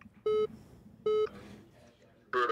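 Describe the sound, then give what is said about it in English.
A glitching phone that keeps ringing and won't hang up no matter how many times its button is pressed gives two short, identical electronic beeps about a second apart, then a brighter burst of tones at the end, all over a low, faint background murmur. “It looks like it's like glitching out because it's it ringing so much. It won't hang up.”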